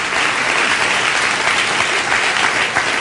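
Steady, dense applause from a large audience fills the whole stretch, loud and continuous with no pauses and no voices standing out.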